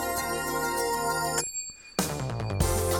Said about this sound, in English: There's the pause, then the bell ring, the falling down the stairs keyboard.